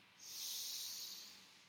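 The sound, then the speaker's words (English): A single long, steady breath drawn in through the nose, an airy hiss that swells and then slowly fades, with no talking over it. “Big inhale through the nose.”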